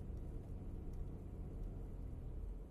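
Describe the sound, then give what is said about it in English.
A car engine hums with a steady, low rumble while the car is being parked, holding an even level throughout with no voices. “There's one little extra credit thing I'm gonna toss in real quick as I'm parking my car.”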